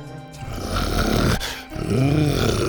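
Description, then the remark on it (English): An animal named Buck growls loudly from the corner of a shed in two long, low, throaty rumbles separated by a brief pause, the rasping tone rising and falling with no voices present. “Buck growled loudly from the corner of the shed.”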